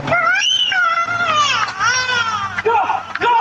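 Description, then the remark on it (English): A two-year-old girl wails and screams in loud, sustained, high-pitched cries with sharp rising and falling pitch as a coyote attacks and drags her in her driveway in Los Angeles, recorded on a Ring camera, while other voices murmur faintly in the background. “Shocking video of a coyote attacking a toddler in Los Angeles, and it was captured on a Ring camera.”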